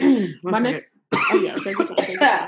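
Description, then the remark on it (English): A few short, rough coughs and throat-clearing sounds after sugar that was licked went down the wrong pipe, fairly loud, broken by a brief pause and mixed with voiced, speech-like sounds. “I was trying not to cough.”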